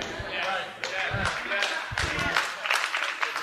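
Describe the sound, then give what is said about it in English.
Scattered, uneven clapping from a small audience, sharp claps coming in loose irregular bursts rather than steady applause, with some dull low thumps mixed in. “Either clap or don't.”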